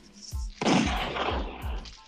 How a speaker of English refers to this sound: It's gonna be abundance. It's gonna be abundance of gunshots today, you know.